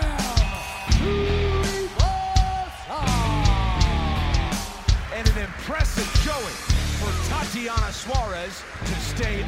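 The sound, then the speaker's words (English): A possible new theme song plays loudly and a bit slow, with a heavy, steady low beat, sustained tones and sliding, voice-like melodic lines over punchy percussive hits. “They sent us an email yesterday with new theme song possibilities.”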